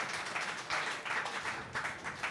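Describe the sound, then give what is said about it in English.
A brief, modest round of applause from a small group after a correct answer in a football quiz, steady scattered clapping at moderate volume with no voices over it, lasting about two seconds. “Slight sympathetic and also patronising round of applause.”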